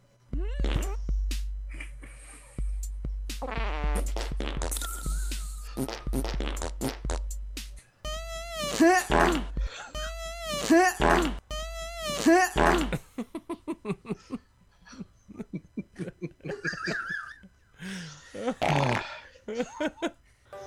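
A loud song remix built from fart sound effects: pitched, wobbling farts ride over a heavy thumping bass beat, then give way to choppy, rapid bursts of fart noises near the end.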